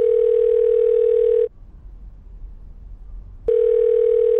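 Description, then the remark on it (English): A steady, loud electronic telephone tone sounds alone, cutting off for about two seconds of quiet line hiss before starting again, like a phone line while a call is placed. “I've just got to make one more phone call.”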